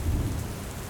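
Steady, heavy rain hisses continuously, fairly loud, with a deep low rumble underneath that fades slightly as the downpour keeps going without pause. No one speaks.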